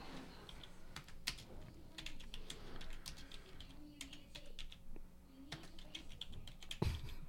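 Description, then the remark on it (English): Rapid, irregular clicking of keys on a computer keyboard, fairly quiet, in bursts with short pauses, ending with a louder thump. “I can't even see what I'm typing.”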